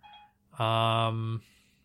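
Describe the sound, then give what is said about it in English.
A single loud electronic tone from the Siri voice assistant, triggered by the spoken word "Assyria", a steady buzzy beep lasting nearly a second with a flat pitch, framed by faint background sound before and after. “It's funny every time I say Assyria, Siri thinks that I'm talking. Oh, that's funny. She just beeped.”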